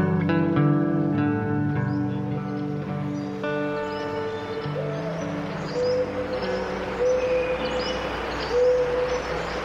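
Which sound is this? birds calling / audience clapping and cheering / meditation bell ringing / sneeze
birds calling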